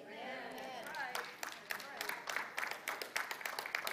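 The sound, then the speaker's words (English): A preacher's voice trails off as scattered clapping from a church audience starts and quickly builds into moderate, steady applause for his comment, irregular sharp claps filling the rest of the moment. “Actually, if I'm going to be really honest, I think that comment deserved an even better clap.”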